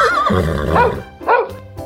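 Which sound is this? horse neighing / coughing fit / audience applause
horse neighing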